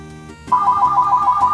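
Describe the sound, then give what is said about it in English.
A phone ringtone kicks in abruptly after a brief pause, a loud, warbling electronic tone that trills steadily, with no one talking over it. “Hold on, my phone's phone's ringing.”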